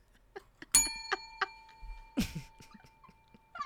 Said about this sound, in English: It's like you could have said, I know the bell's gone, but you could have said, okay, I'm excited to see you too.